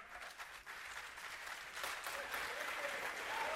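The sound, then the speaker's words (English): Audience applause, a dense steady wash of many hands clapping that builds slightly louder over a few seconds, with no voices standing out. “Yeah, let me get my applause.”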